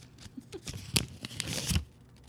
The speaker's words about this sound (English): I'm unfolding the paper now.